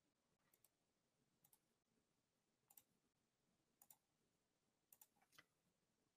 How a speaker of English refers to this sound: Clicking.